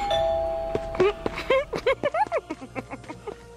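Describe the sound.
A doorbell chimes at the start, a clear sustained ring that lingers and fades, then quick bursts of voice follow over its tail, moderately loud.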